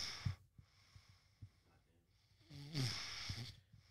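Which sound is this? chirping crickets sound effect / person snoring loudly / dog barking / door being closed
person snoring loudly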